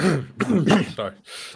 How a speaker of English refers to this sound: Sorry, cough. Horrible cough you've got there. You need to get that checked out by a legitimate doctor.